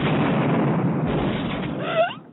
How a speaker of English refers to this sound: Oh, right. The explosion.